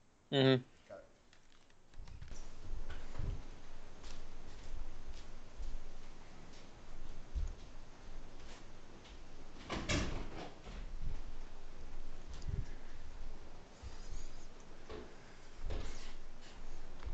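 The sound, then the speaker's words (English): Shuffling and handling noises lead up to a single solid thud near the middle as a door is shut, followed by more low rustling movement. “Hey, I'm gonna close this door real quick.”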